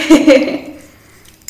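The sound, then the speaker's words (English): Two quick clinks of cups of mud water knocking together in a toast, the second following right after the first, each leaving a short ringing tail that fades into quiet. “And celebrating the new good habits. Mud water. Cheers.”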